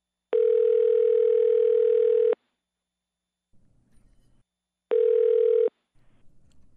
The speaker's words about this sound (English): Finally, a phone call to the West Coast.